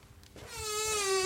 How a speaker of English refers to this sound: What is it with the doors in this place swinging open? It's the same upstairs in your sound booth. Can't keep them closed.